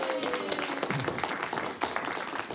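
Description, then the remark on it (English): A crowd applauds steadily for a group of participants who have just finished, a dense wash of many hands clapping at an even loudness for a couple of seconds, with a faint voice underneath. “All right, give it up for these guys.”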